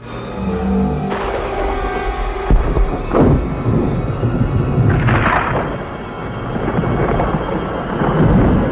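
Loud, continuous thunder rolls and rumbles through a storm, broken by a few sharp cracks and booms that rise above the deep, steady roar.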